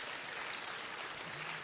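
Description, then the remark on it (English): A church audience claps steadily together, a dense, even wash of applause from many people, sustained without pause for the short moment. “So give yourself a round of applause, right, for coming out to church.”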